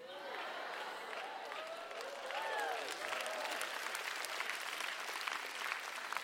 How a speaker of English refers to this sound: Well, your members are clapping for you. Oh, not bad, huh?